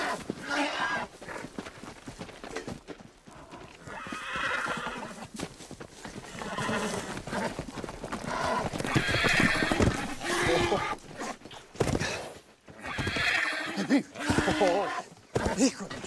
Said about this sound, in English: This horse is for sale. You want to buy? Wild horses, huh? See, we catch, but not break them. They're very wild. Not many can ride.